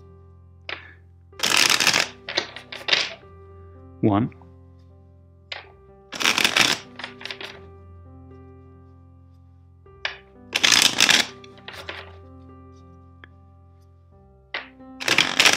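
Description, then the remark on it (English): A deck of tarot cards is shuffled four times in separate, crisp riffling bursts spaced a few seconds apart, fairly loud, with a single brief spoken word in a quiet gap. “First, let's shuffle the deck four times for you.”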